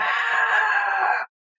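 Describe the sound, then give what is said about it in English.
A person imitates a monster's roar with a single loud, raspy, sustained growl lasting just over a second, steady in strength before cutting off sharply into silence. “And it turns and looks up at you and just roars.”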